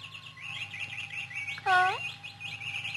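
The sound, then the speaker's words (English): A cluster of small caged birds chirps and twitters nonstop in quick, high-pitched bursts after the covers are pulled off their cage, with one louder, fuller call breaking through halfway, all over a low steady hum. “You pulled the covers off the cage. Carl! Carl, I'm speaking to you. Those birds, I don't like them.”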